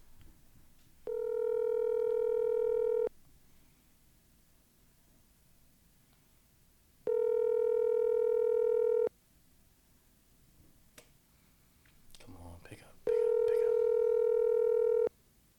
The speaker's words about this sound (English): Let's see if he'll answer the phone.